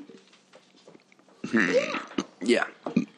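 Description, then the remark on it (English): A loud burp rumbles out in two drawn-out, croaky bursts after a quiet stretch of faint background murmur. “Yeah, sorry, the burp.”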